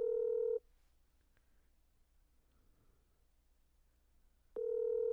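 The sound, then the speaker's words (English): A phone ringing out over a speakerphone: two loud, steady electronic ring tones about four seconds apart, with a quiet hiss in between and no talking. “She's not going to answer my phone call.”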